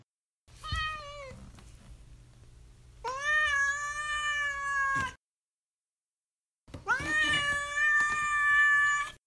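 A cat meows three times, fairly loud, with drawn-out, wavering calls separated by short silences; the second and third meows are long and insistent, almost yowling.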